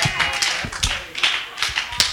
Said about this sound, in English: Y'all clapping at God? I'm talking about giving him thanks through your... Is that how you praise?